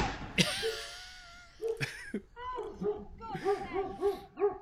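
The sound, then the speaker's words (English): A dog on a doorbell camera recording lets out a sharp burst, then a quick run of short, pitched yelps and barks. Some voices may be mixed in. “Learn to drive, you stupid dog.”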